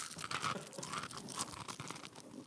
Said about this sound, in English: Eating into the microphone